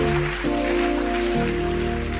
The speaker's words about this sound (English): As you are clapping, I see that blessing coming to you right now.